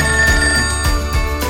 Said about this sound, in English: At one point, a deal appeared to be done with Genoa, when, unexpectedly, the phone rang at Beccalossi's home one evening.